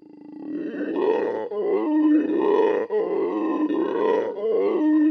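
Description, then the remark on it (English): A howler monkey roars loudly, a deep, rasping, continuous bellow that surges in several drawn-out waves with brief catches between them, with no talking. “So it seems the howler monkey just can't have both.”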